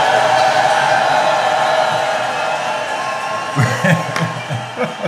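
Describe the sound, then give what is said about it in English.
A crowd applauds and cheers loudly for Rika Trash, a dense wash of clapping with whoops and shouts, thinning out near the end as a few voices and claps break through. “Hey, let's give a round of applause for Rika Trash.”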